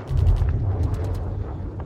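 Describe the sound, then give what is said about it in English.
Approaching gunfire, a scattering of sharp reports cracking over a heavy, continuous low rumble, with no voices, like a battle. “you can hear gunfire approaching even closer than when we started this little episode together”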